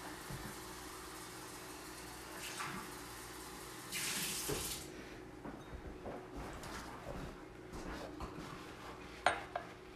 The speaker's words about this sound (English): I'm washing my glass out, though. I'm not a heathen like y'all.